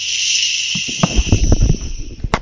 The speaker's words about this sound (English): Oh, hold on. I've got to readjust the chair. That hasn't been making that noise.